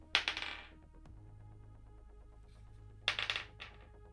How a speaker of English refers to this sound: You can hear him tapping away on his keyboard through your communicator.